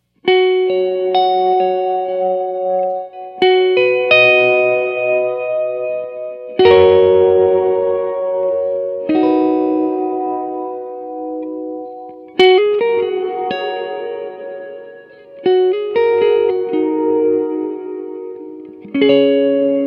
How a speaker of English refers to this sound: The cool thing about this reverb is it allows you to cut in the mix, and then the reverb comes up. But the downfall of that is it's almost another, I guess, instrument.